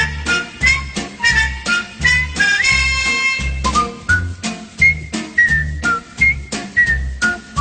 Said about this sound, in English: who was actually whistling on the TV theme